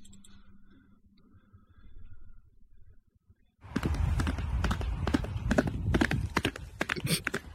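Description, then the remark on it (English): After a few seconds of near-quiet, a horse's hooves suddenly start clip-clopping loudly on a hard road surface, a steady run of sharp knocking steps over a rough, noisy background. “This horse is going down. He's minding his own business and wham!”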